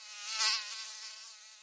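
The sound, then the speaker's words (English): A thin, high-pitched insect whine drones steadily, like a mosquito or fly buzzing close by, swelling briefly louder before settling into a constant hum. “Thanks to the cooler weather here in the UK, the mosquitoes and flies that like to take up residence in my house each year have finally moved on.”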